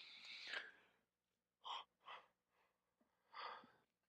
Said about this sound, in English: I told you, I warned you, yawn in aisle 4. Somebody get that brother some coffee.